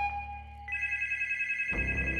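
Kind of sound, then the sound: signal or alarm, telephone ringing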